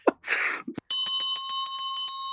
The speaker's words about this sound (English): Right, I believe that's the bell for last orders